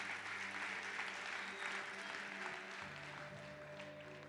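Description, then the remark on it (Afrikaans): An audience claps for those who made a commitment to pray, in a dense, steady wash of applause that holds for several seconds, with a low sustained musical tone underneath and a slight fade toward the end. “Kom ons klap uit hande vir die ouens wat daai commitment gemaak het.”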